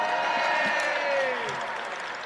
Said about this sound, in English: Come on, the clapping's got to come on up.